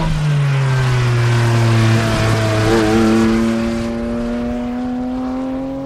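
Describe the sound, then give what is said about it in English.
The cup car engine of a Cayman GT4 RS accelerates steadily, loud, its rich harmonic growl climbing in pitch over several seconds with a raspy, high-revving edge, and no one speaking. “It's a cup engine, the cup car engine, in this car.”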